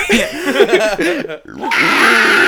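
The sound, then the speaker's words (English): A person voices a pig squeal: warbling, snorting vocal sounds rise and fall, then after a short pause a loud, harsh, sustained squeal stretches to the end. “Pig squeal.”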